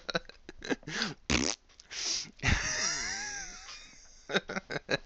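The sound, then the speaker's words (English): A drawn-out, wavering fart sound effect blurts out loud, sputtering for over a second, with short choppy vocal bursts before and after it. “I tried telling my burly coworker of what an amazing coincidence that was, but he basically just farted in my my direction.”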